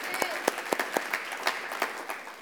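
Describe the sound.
An audience applauds steadily for a couple of seconds, a dense patter of many hands with a few sharper individual claps popping out, moderately loud, with faint voices underneath.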